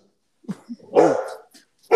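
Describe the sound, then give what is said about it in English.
A dog named Moose barks in a few quick, sharp bursts: a couple of short yips, then a louder full bark, with one more bark starting at the end. “Your dog's actually. Moose agrees.”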